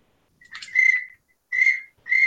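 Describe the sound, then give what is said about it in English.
Three short, rolling pintail duck whistle calls, as used when duck hunting, each a trilled, high whistle note, clear with brief pauses between them and no talking. “So what's a pintail whistle sound like? I know it differs from the mallard whistle. They just have a roll.”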